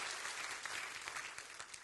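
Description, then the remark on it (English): A crowd claps together in dense, steady applause, many hands overlapping into a continuous wash of sharp clicks at a fairly even loudness, with no voices standing out. “Clap your hands and rejoice to that right now as we go forward.”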